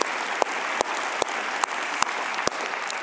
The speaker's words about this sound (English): Would you just applaud with me for all those who raised their hands? We love it, we love it, we love it.